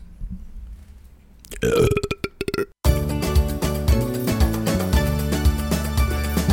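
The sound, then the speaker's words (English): Two loud burps in quick succession, the second longer and more drawn out, following a brief quiet stretch with no talking. “Double burp.”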